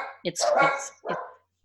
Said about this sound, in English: Apparently my dogs have heard something at the at the door. And I was just worried that this was going to happen. So I'm going to apologize to our listeners if you're hearing little Shih Tzu dogs in the background, protecting mom